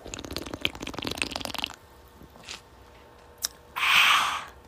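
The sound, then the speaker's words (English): Crackly sipping of a fizzy soda, with bubbly snaps for a couple of seconds, a quiet pause with small mouth clicks, then a short airy slurp at the end. “Taking a sip of my soda, so just ASMR real quick.”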